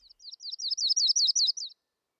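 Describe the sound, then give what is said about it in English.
A yellow-rumped warbler gives a quick run of about a dozen sharp, high chirps, rising slightly in loudness before stopping abruptly, with no other sounds. “They dart spitefully about, uttering a sharp chirp.”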